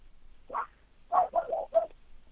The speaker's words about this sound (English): You said, can you tell that dog to shut the fuck up?